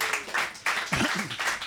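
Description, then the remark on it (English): A crowd applauds an audience member who has just finished university, with dense, steady clapping that fills the whole clip, with brief voices and a cheer rising through the noise partway through. “We had them applaud now before we find out what you studied.”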